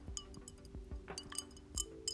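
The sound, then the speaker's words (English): Drinking glasses clink together several times in a quick, irregular series of light, bright taps, fairly quiet, over a low steady hum with no talking. “I've got my drink. Clink, clink.”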